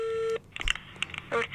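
A steady telephone tone sounds for a moment, then breaks off into a quick run of short dialing beeps and clicks, fairly close and clear.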